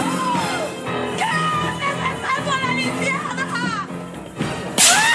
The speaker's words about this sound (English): Who doesn't love a good gasp and slap? A gasp and slap may be a bit extreme of a manifestation, considering this is a favorable aspect.